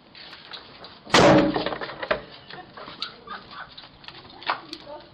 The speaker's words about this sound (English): The male suspect pulled out a gun, pointed it toward the front door, and then you can hear the door slam, and the suspects appear to laugh as they run away.